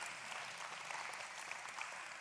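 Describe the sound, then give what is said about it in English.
An audience claps together, a dense, steady wash of many hands that holds at an even loudness for a couple of seconds, with no voices standing out. “You can clap and tip.”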